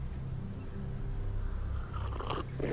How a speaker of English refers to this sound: Oh, a little slurp. Nice. You've got to slurp to get the taste. Nice cup of tea, actually.